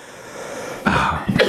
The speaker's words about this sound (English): I've gotten into a coughing fit here.